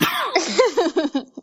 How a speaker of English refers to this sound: Don't make me laugh. It makes me cough. It's a terrible thing.